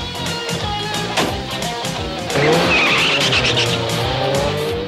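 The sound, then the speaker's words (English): A car engine roars as the vehicle Jackhammer, with Mayhem aboard, drives off with a loud, sustained tire squeal, the screech rising and holding for a few seconds, with no talking. “Mayhem climbs in and Jackhammer drives off, squealing”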